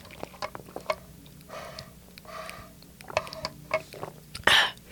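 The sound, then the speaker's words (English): Sips and gulps of water from a glass, with small wet clicks and swallows over a few seconds, ending in a short breathy exhale after drinking. “I don't even know how to say it, but let me drink my water.”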